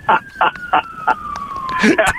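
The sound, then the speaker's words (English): A fire truck siren holds one steady high tone that slowly winds lower, running under a string of short bursts of talking voices. “There's another fire truck.”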